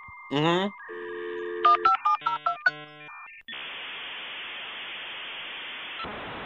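A dial-up modem connects: a dial tone, a quick run of touch-tone beeps, warbling handshake tones, then a long burst of harsh static hiss that shifts near the end.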